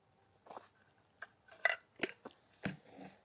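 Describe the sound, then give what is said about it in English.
ASMR-style water sounds: about six soft, irregular splashy bursts with wet, crackly texture, quiet overall and without any voices. “Yeah, that was some water, ASMR.”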